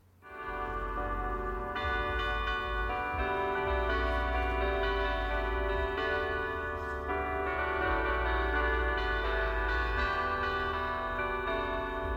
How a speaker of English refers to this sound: I like that kind of stuff. It reminds you that it's a new day. The church bells are ringing.